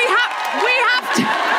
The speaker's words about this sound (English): Sorry? What, did someone just shout?